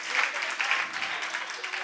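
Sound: audience clapping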